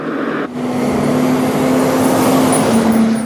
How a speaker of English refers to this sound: 6 days later, fire trucks still rolling into Lytton. Crews from communities across the province cleaning up the fire that destroyed most of this village.